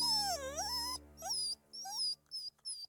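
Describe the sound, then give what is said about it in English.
A frightened larger pit bull whimpers in a house kitchen: one long, wavering high-pitched whine, then a few short, broken whimpers with brief pauses between them. No one speaks. “Garth did have a dog in the kitchen. It was a larger pit bull, but it was definitely frightened”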